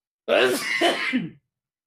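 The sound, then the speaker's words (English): A single loud sneeze, a voiced burst that trails off after about a second, with nothing else around it. “Bless you. Excuse me.”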